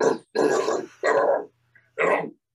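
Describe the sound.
A voice imitates a harsh, growled metal-style vocal that sounds like a barking dog: four short, loud, gravelly bursts in a choppy rhythm with brief pauses.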